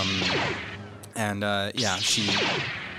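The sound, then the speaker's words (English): A voice imitates sci-fi weapon sounds: quick sliding-pitch blaster zaps, then a loud sustained buzzing lightsaber hum with a swoosh, followed by more pitch-sweeping zaps, all made by mouth. “give me some blaster sounds and some lightsaber sounds.”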